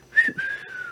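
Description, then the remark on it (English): A person attempts a wolf whistle but produces a flat, breathy two-part whistle without the usual rising and falling swoop, with no talking. “You don't even whistle right.”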